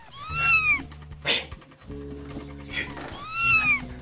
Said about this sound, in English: Noise. It sounds. Is that a? It's a kitten.